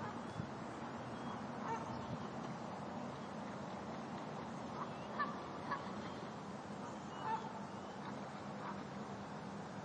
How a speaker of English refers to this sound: There's still a few over here on the grass nearby. Not ducks, geese.